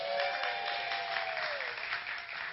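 Steady, dense clapping from many hands fills the whole stretch without a break. It stays fairly even in loudness, with no one speaking over it.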